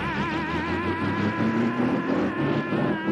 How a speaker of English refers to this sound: He climbs behind the wheel of that snowmobile and just revs it up. Yeah, no muffler on it.